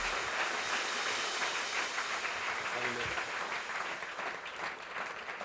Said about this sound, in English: Give a warm hand clap to Pastor Brian Tomes.